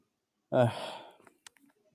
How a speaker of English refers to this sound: That's why you can hear me yawning all the time. I'm tired.